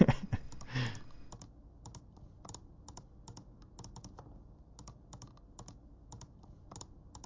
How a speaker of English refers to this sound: That's clicking a mouse.